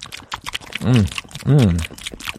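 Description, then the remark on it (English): Pete Holmes chews caramel ice cream with rapid wet, clicky smacks, broken by two loud, drawn-out hummed moans whose pitch rises and falls. “I'm going to listen to Pete Holmes chewing ice cream.”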